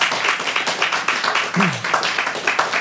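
A dense burst of applause from a sizable crowd, many hands clapping rapidly and steadily at close range, with a brief voice slipping through midway.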